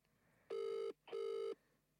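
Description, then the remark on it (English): Two steady, buzzy ringback tones from an outgoing phone call, each lasting under half a second with a short gap between them, clear and fairly loud against a quiet background with no talking. “He's getting double called because I'm sick of this shit, bro.”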